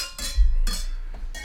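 Glasses of Chianti Classico clink together in a toast, three bright, ringing chimes spaced unevenly over a second and a half, each with a shimmering tail, with no talking.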